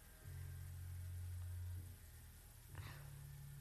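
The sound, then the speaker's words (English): A race car engine in a driving game drones steadily at a low pitch while driving down the back straight after a race, drops back briefly, then returns with a short burst as the revs shift. It sounds continuous, with no talking. “Driving down the back straight.”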